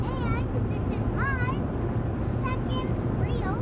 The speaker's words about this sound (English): So we are on the road. This is our first legit truck-isode in a while. We're driving through the piney woods of almost East Texas.